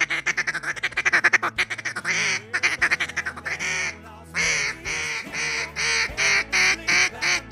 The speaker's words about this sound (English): Up next, we'll grab our duck calls. I've got mine right here.